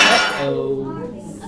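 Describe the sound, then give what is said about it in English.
Broken glass shards clink together in a short, bright clatter, followed by a few thin ringing tones that fade over about a second. “There's a glass, got glass here, and there's a little right, here too.”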